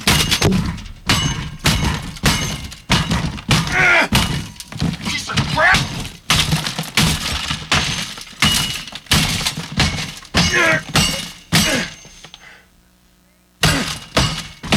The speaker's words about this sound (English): I'm gonna rip out this stupid ass CD player. I'm gonna take a hammer.